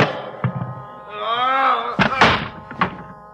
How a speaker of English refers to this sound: Behind me, I felt a large, cold handle. The door to the meat storage room. I heaved it open.